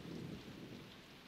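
A low, muffled rumble of thunder from outside rolls steadily with a soft hiss of rain, fairly quiet, with no voices present.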